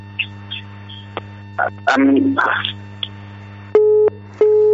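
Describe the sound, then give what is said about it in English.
A phone busy tone sounds twice as a caller's line drops during a call-in program: loud, steady mid-pitched beeps of equal length separated by a short gap, following scattered muffled voice fragments over a constant low electrical hum. “All right, we lost that call.”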